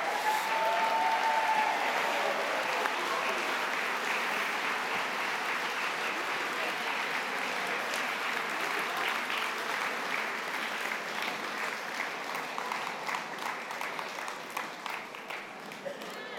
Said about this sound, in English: So if you'd like to applaud them as they leave the stage. Keep the applause going, keep it going.